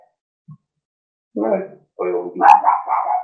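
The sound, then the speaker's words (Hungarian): A dog barks several times behind the speaker, a short burst followed by a quicker run of loud barks, with no other sounds around them. “Ja, csak ahogy megszólalt a kutya mögötted, úgy arra reagáltam.”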